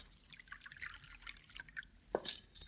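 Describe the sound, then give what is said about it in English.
Water pours into a glass as a drink for a woman, in a light, irregular trickle of small splashes and drips, ending in a brief louder splash and a faint glassy ring. Quiet, with no talking. “Yeah, I'll get you a drink of water, senorita.”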